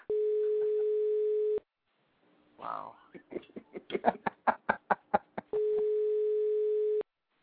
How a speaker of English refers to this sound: What is with the beeping sound? Is this some alien force trying to contact us through this show?